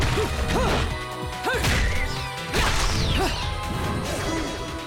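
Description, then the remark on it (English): Several heavy smashing impacts land in quick succession as a woman grabs a whole line of angels and smashes them into the ground, mixed with swishing whooshes and short high cries over a dense, busy background. Nobody speaks. “She grabs a whole line of angels, smashes them in the ground.”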